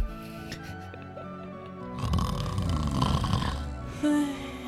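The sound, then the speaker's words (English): Voices imitate the snoring of several sleepers, starting with a low, droning rumble and then growing into a louder, rough overlapping texture as several mock snores pile up. “So you're all sleeping soundly, apart from the multiple snores.”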